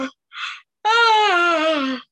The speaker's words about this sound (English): Are we yawning again? Stop yawning!